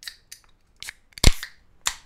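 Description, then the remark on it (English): A beer being opened as a sound effect: a few soft hissy clicks, then one loud sharp pop with a short fizzing hiss, and a final brief burst of hiss. No one talks. “shall we open some beers?”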